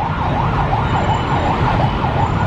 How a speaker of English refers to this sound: Shut the fuck up, ambulance.